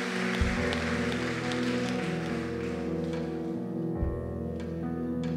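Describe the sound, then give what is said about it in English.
An audience applauds with a dense, steady patter of many hands to honor a group of women who have served for years, over sustained organ-like music; the clapping thins out toward the end while the music carries on. “Come on, give them a round of applause.”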